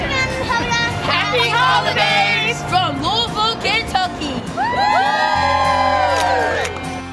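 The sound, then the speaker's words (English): A packed holiday crowd cheers and whoops outdoors on a plaza, with many high, rising shouts and squeals layered over a constant roar of voices, loud and energetic throughout. “A terrific holiday crowd out there on our plaza. It's packed once again. High energy.”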